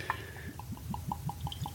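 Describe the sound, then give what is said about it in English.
Rum pours from a bottle into a glass in a steady run of quick, evenly spaced glugs, fairly quiet, with no one talking. “All right, so we got her poured up here.”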